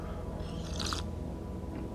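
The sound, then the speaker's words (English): A single short sip of coffee from a cup early in the morning, a quick wet slurp over a low steady background hum, with no talking. “You know, I'm sitting here with my cup of coffee really early in the morning, you know, take a sip.”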